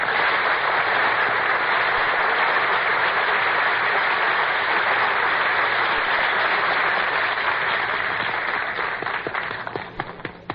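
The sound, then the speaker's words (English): Sustained audience applause at a broadcast show as master of ceremonies Dooley Wilson is introduced, a dense, steady wash of many hands clapping at full volume for about ten seconds before thinning out and fading at the end. No voices. “Dooley, you're not supposed to applaud yourself.”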